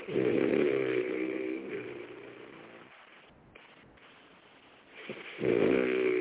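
A man snores loudly over a phone line, two long rasping inhales separated by a quieter pause, the sound thin and band-limited like a call connection.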